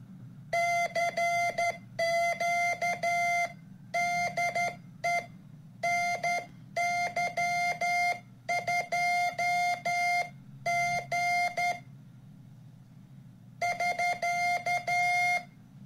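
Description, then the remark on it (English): Morse key sidetone from a small Morse key hooked up to a transmitter: a steady mid-pitched electronic tone keyed on and off in irregular bursts of short and long beeps, separated by brief pauses, over a low background hum with no talking. “So here's the little key hooked up, and let's hear what it sounds like.”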